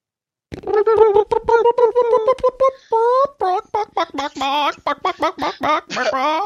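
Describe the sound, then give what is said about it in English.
A voice imitates a chicken, starting with a fast run of choppy clucks and breaking into squawky, warbling bawks, loud for several seconds. “Why did the beeping turn into a chicken?”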